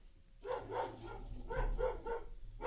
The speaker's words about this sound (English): Oh, I've got some background dogs. Sorry about that.